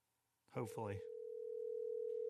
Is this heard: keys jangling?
no